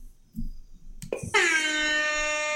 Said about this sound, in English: Thank you. That's the air horn of dad wrongness.